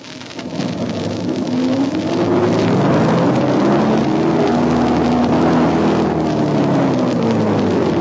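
A car engine strains and revs hard for several seconds, its droning pitch rising and wavering as it labors, a car stuck in deep snow at night during a snowstorm, its right rear wheel stuck, trying to plow through. No one speaks.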